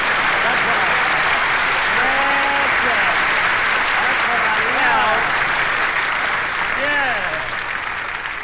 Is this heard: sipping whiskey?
no